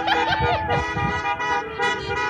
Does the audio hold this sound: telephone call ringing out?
no